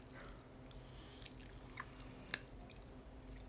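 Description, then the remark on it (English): Quiet, sporadic tiny pops and crackles of strawberry popping candy in a mouth, with one sharper snap standing out, over a low steady hum and faint mouth sounds like chewing. “They're still popping in my mouth.”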